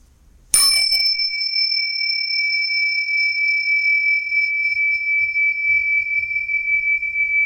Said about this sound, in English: The bells say it is. Sure is.